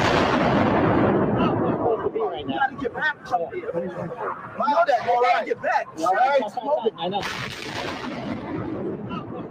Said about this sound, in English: It's now 11 o'clock. Still hear continuing explosions, but it's another explosion. This recording was made between 10 and 11 o'clock. Okay, right. The explosion came from the direction of Building 7.